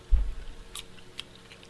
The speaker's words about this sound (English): Dude. I can hear you chewing.